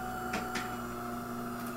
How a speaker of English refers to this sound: Sorry, that was my espresso machine shutting off. Oh, good. Ignore the espresso machine behind the 9 o'clock at night.